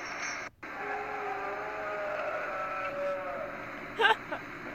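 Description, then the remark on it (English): A drawn-out, wavering goat-like bleating cry rises over a steady hiss of background noise, fairly faint, with a brief louder burst near the end. “Sounds like a goat giving birth or something.”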